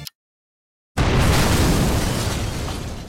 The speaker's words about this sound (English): What followed was a thunderous explosion that rocked Lower Manhattan, one that carved a 100-foot crater several stories high and several stories deep.